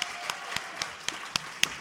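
A few hands clapping in a steady, fairly quick rhythm, about eight sharp claps in under two seconds, faint and thin rather than the dense roar of a full crowd, as another round of applause for the musician who wrote the theme song.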